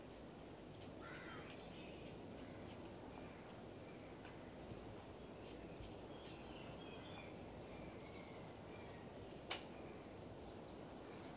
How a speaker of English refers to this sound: Song of the birds.